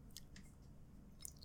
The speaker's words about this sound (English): I'm going to need a sip of my drink to get through this. Hang on.